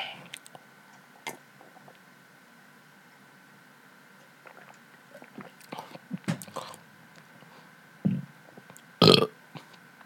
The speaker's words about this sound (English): Gotta get the burps out.